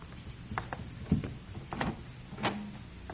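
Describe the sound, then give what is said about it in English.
A door is unlatched and opened, a handful of clicks, knocks and rattles spread over a few seconds, moderately quiet, with no voices. “open the door, please.”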